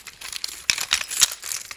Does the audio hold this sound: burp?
no